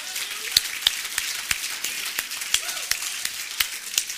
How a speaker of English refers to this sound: Clap your hands. Would you do that across this building?